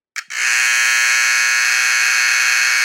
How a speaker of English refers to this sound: And then battery-operated buzzers were soon to follow, which is kind of funny to think that you had to actively replace a battery to maintain something that might have sounded like this.